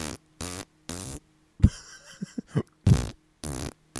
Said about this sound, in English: And this was the …. The farting band.